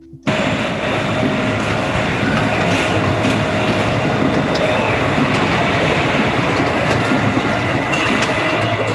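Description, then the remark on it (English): A self-made synthesized drone kicks in abruptly and holds steady for the whole stretch: a loud, dense wash of rumbling noise threaded with a few faint, unchanging high tones, with no voices. “Do you want to hear the drone that I made?”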